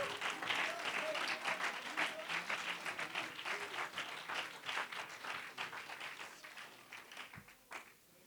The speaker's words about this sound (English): You better stand to your feet. You better clap your hands and lift your voice. What a privilege.